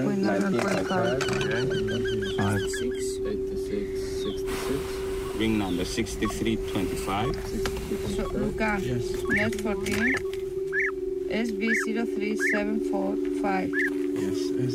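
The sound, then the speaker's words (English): Small migratory birds, just arrived after crossing the desert and the Mediterranean, chirp and call in repeated short bursts during bird ringing on a small island, while a person speaks over a steady low hum in the background. “The process is called bird ringing, where these small birds, and you can imagine they've just taken this colossal trip across the desert, then across the Mediterranean, and this small island is often their first stopping point to refuel”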